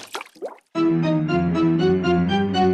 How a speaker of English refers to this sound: Creeping. Slurping. Smacking. Splashing.